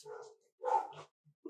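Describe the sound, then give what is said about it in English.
A dog barks in a few short, separate bursts, the middle one loudest, with brief pauses between. The barking is fairly soft, with no talking over it. “I can somehow ask my mom to make sure they don't bark.”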